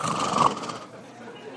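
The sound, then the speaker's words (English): A voice imitates a heavy, menacing breath, Philip Seymour Hoffman's breathing as heard in the Mission: Impossible III theme: a single raspy, throaty exhale, fairly loud, that fades away after about half a second into quiet. “It's the same theme, but you can hear Philip Seymour Hoffman breathing.”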